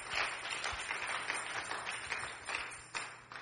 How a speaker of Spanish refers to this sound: Gloria a Dios. Fuerte aplauso a Él.